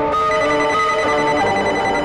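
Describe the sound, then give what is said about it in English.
A telephone ringtone plays loudly and steadily, a bright electronic melody with sustained tonal notes and no voices. “Never heard this ringtone before.”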